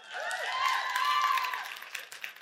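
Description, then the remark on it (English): An audience claps in a steady, dense patter, with a few high cheering voices riding over it; the applause holds strong, then thins and tapers off near the end. “And listen, I'm all for the claps.”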